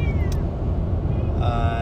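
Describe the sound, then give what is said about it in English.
A cat meows a couple of times, short drawn-out cries, over a steady loud low rumble like an engine running. “yeah, I need to shut myself up because my cat is getting crazy.”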